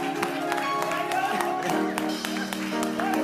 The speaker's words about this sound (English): Ladies and gentlemen, brothers and sisters, let's rise and give a round of applause to our very own